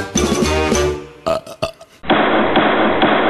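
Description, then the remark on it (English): A loud, drawn-out croaking burp lasts about a second, followed by a few sharp clicks and then a steady, muffled rushing noise. “Wyatt Earp, he makes me burp.”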